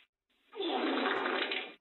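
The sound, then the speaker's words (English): A toilet flushes with a rushing, gurgling whoosh that swells quickly and holds steady for just over a second before cutting off, fairly loud, with no one speaking. “Was that a toilet flush?”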